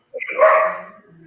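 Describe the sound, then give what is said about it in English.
A single loud dog bark with a sharp onset that tails off into a faint low rumble afterward. “That's your dog barking.”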